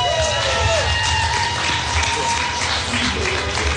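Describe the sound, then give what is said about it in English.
A crowd applauds steadily to welcome the next speaker, a dense wash of clapping with scattered cheers and whoops rising above it, holding at a fairly loud, even level throughout. “Next up is Mike Penta. Let's give him a round of applause.”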